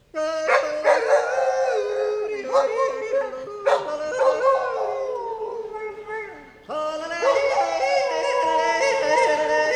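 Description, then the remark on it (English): A dog, Cutie the Yodeling Dog, howls in a loud, warbling, yodel-like way as an entertainment act, its pitch sliding up and down in long continuous phrases, with a brief dip before it resumes strongly. “Ladies and gentlemen, Cutie, the Yodeling Dog.”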